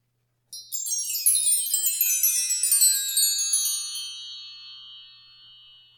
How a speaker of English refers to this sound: We'll be back with our stories after our wind chime.